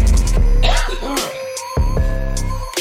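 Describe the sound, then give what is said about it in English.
A loud bout of throat clearing and coughing: a few harsh, raspy bursts over about three seconds, with no talking. “Was my mic on for that? Because I purposely we don't got no cough buttons here.”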